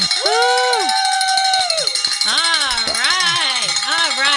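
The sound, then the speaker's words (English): A hand bell clangs steadily with bright, ringing tones, rung to celebrate a donor's pledge during a fundraising call-in drive, partly buried under loud cheering and whooping voices that rise and fall throughout. “So what that means is you get to ring the bell.”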